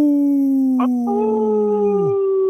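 A wolf gives one long, loud howl that holds a steady pitch and then slides downward as it fades out, with a second higher voice briefly joining in. No one speaks.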